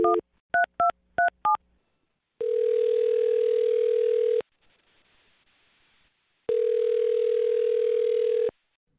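telephone dialing and ringing

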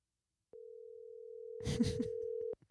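phone call ringing tone

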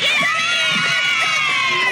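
audience cheering

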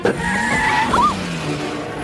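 car skidding

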